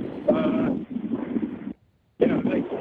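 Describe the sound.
Gusty wind buffets a microphone in loud, rumbling bursts, cutting out for a brief moment of silence before roaring back, with a muffled voice faintly underneath.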